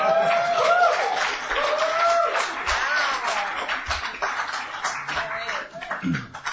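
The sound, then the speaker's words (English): An audience, including government lawyers, claps steadily for several seconds, a dense wash of applause with excited voices and whoops rising through it, then it gradually thins toward the end. “Can I just say that the number of, you know, government lawyers who are clapping at that is itself a very striking thing.”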